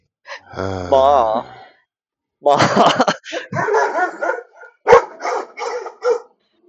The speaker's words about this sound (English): dogs go off and they are pissed.